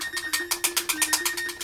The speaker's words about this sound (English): There's that lovely beep.